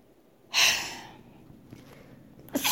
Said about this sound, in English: I'm sneezing because I'm allergic to all of this bullshit, you guys.